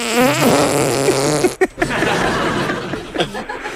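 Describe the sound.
Squelchy arm-fart noises made with the upper arm, pushed out in a warbling, rising and falling melody imitating a phone ringtone, then a sharp break and a longer stretch of raspy, sputtering flatulent buzzing with faint chuckles.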